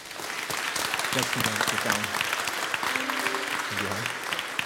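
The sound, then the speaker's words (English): An audience in a church applauds steadily after a new member is received into church membership, a dense, reverberant patter of many hands clapping throughout, with a few faint voices and brief tonal sounds rising beneath the clapping. “We should clap.”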